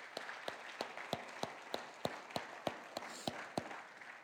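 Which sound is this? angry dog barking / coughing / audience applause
audience applause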